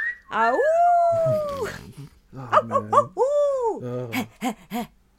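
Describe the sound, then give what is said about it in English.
A loud, exaggerated cartoon wolf howl swoops up and falls away, followed by a burst of yips and a second drawn-out howl, then a few short choppy yelps. “They turn to that wolf.”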